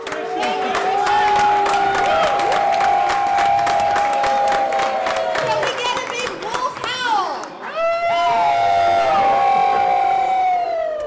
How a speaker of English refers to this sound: But the adoring crowd made sure to send off their beloved wolf woman with a pack of howls that shook the rafters.